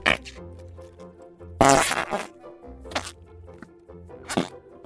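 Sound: fart putty squelching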